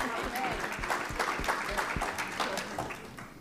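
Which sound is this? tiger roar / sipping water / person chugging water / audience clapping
audience clapping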